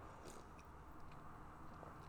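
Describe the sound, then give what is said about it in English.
Someone sips a canned energy drink with no sugar and 200 milligrams of caffeine, with faint slurping and swallowing sounds over a steady low background hiss. There is no talking. “Okay, so here we go. Let me take a sip.”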